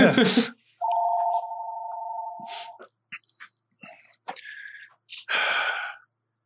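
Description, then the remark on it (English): A single electronic telephone ring, a steady warbling tone lasting about two seconds, surrounded by short breathy noises and scattered clicks and knocks. “That's whose phone? My phone. Somebody will get it.”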